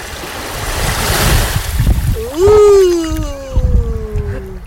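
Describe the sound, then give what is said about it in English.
Steady rushing surf and wind noise fill the scene, with waves of the Mediterranean Sea washing in continuously; midway a long, loud tonal horn-like call slides slowly downward over the water sound. “I'm going to let you enjoy some of the sounds of the Mediterranean Sea, only on KCTK Radio.”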